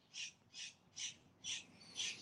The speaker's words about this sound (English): Tell me, what's that noise? What is that? Where you at, bird?